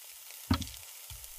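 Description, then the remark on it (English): Flesh sizzling on a hot plate, a steady crackling hiss that continues throughout, broken by a soft low thump midway and another shortly after. No voices. “As you can smell in your nose the smell of burning human flesh, and you can hear it bubbling and crisping and sizzling.”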